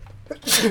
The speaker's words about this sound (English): Bless you. Bless you.